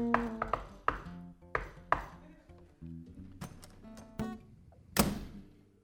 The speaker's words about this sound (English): Why, of course I do, you silly goose. You just have to go up to one of these mirrors and do the secret knock.